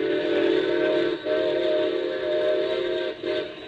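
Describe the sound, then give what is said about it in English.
A steam train's whistle blows loud, a chord-like shrill tone sounding in long blasts broken by two brief gaps, with no voices, sounded for an approaching grade crossing. “Better whistle for it.”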